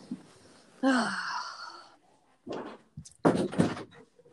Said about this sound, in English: My mom just got home. All right, guys. Sorry, everyone. I need to close the door.